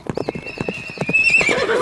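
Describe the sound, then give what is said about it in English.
A runaway horse's hooves clip-clop in a quick, steady rhythm while a shrill, wavering whinny rises over them and grows louder toward the end. “Whoa, horse, whatever your name is! Whoa! Hold your horses, horse!”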